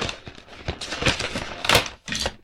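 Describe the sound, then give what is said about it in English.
Cardboard crackles and rustles as a small door of a tea advent calendar is pried open on the 8th, another door flying off, a run of scratchy bursts peaking in a sharp pop, with no voices. “Just another door randomly flew off.”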